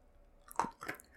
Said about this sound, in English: Chewing it up real quick.